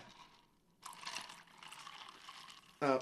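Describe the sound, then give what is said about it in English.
A fizzy drink is poured, a steady bubbly hiss lasting about two seconds after a quiet start, before a voice briefly cuts in at the very end. “She's fizzy.”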